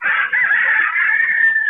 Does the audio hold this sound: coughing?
no